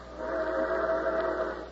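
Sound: train whistle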